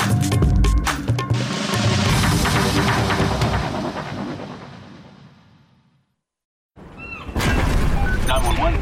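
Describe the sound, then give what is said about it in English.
A loud explosion on a cruise ship with sharp crackling bursts, followed by a rumbling roar that fades away over several seconds into silence before another dense burst of noise abruptly starts. “There was an explosion!”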